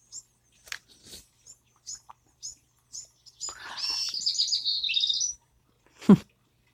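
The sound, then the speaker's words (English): Birds chirp outdoors in the morning, a run of short, evenly spaced tweets followed by a longer bright warbling song. A brief dull knock sounds at the end, with no talking. “Well, the birds are busy this morning.”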